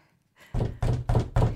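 Four heavy, evenly spaced knocks on a door, loud, each a deep thud with a short ring, following a brief quiet moment.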